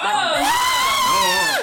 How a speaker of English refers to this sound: I scream a blood curdling scream.